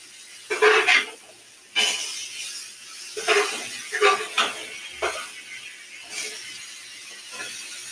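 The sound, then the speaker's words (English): Chicken sizzles in a frying pan, a steady crackling hiss broken by louder spitting bursts every second or so, fairly loud throughout. “I don't know if you can hear that chicken. It's probably loud. It's sizzling.”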